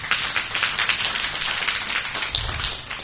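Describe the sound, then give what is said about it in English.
Many people clapping their hands for themselves, a dense, steady patter of overlapping claps sustained throughout, fairly loud, with no voices standing out. “Let's clap for ourselves.”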